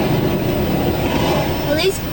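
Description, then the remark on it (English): A steady low rumble of idling car engines in traffic fills the whole stretch, with faint voices in the background and a brief rising squeal near the end. “There's a lot of cars.”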